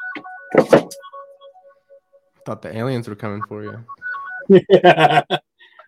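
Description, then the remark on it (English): A speaker's own mobile phone rings during his talk, an electronic ringtone playing a series of steady, mid-pitched tones and beeps, with him speaking over and between them, followed by sharp clattering noises as he puts the phone away. “I'm going to have to hide this. I'm sorry. Thought I put my phone away.”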